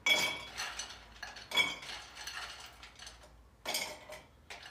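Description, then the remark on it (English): Ice cubes clink and clatter into a glass while a cocktail is being made, several sharp bright knocks with short rattles between them, fairly loud, no voices. “Just put a little ice in the glass.”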